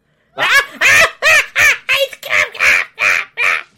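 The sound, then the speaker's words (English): A person makes a rapid series of about nine loud, nasal squawking calls, evenly spaced, a voice imitating a bird or duck with no other talk. “Why does he sound like a bird?”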